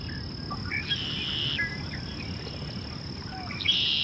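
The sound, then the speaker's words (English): A red-winged blackbird sings a few buzzy, trilling phrases over a steady wetland backdrop of droning insects and the low rumble of waves out on the coast, with another short call near the end. “It's a red-winged blackbird. Such a common bird, but a beautiful song that you can't miss.”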